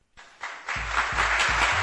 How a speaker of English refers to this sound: Adam Schefter, ladies and gentlemen, let's give him a roaring round of applause, shall we?